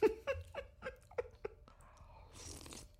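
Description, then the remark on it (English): A handful of quick wet smacks and clicks, then a drawn-out, hissy slurp as a woman sucks a spoonful of canned stew, rising brighter and airier near the end. “She did the slurp.”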